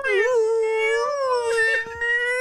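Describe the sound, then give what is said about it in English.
A long, wavering, high-pitched moan rises and dips in one continuous tone, like a whale song, loud, with no talking over it. “It's just a whale song all the way to the car.”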